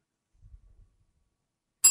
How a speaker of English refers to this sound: You have to tell us which bell is it.